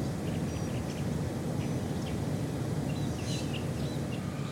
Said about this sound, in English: We hear the chirping of birds, signaling that it's morning time, a new day.